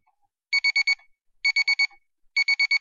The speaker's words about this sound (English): The alarm on the timepiece went off. They both looked at it simultaneously.